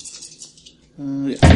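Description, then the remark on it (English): Dice rattle and clatter lightly across a table in quick, jangling bursts, followed by a brief voice and a sharper, louder knock at the end. “So wait, this one kind of rolled over.”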